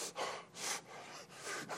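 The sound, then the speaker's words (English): A voice imitates a man in his seventies suddenly breathing very heavily: four or five loud, harsh, airy gasping inhales and exhales in quick succession, rasping, with no talking. “All of a sudden, Jack started breathing real heavy.”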